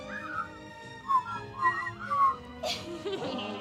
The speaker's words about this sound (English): It's hard to whistle when you're laughing. I'm sure the audience is enjoying our scintillating whistles.